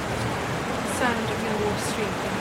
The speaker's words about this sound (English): There's a roar of water. This is Guzzle Hole. Oh, wow. What a... And it's a huge cave. But you can hear...